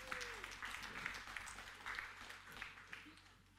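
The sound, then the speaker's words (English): An audience claps steadily for a few seconds, a dense, even patter of many hands holding at a moderate level, with a brief voice or whoop rising early on. “You can clap. Go ahead.”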